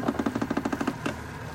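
A motorboat engine putters as the boat travels upriver through the tundra, in a rapid, even rhythm of low, throbbing pulses, then gives one sharper burst before settling into a steady, low drone. No one speaks.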